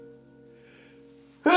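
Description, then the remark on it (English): A low steady hum fills a quiet stretch, then a single sudden, loud sneeze bursts out right at the end. “Excuse me. Bless you.”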